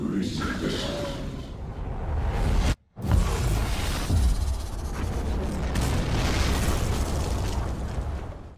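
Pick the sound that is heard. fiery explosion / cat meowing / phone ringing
fiery explosion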